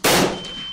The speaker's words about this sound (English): As Becky fired, the blast from the shotgun ringing in my ears, Zephyr threw her wand upwards and a shimmering field of force stopped the bullets from hitting her.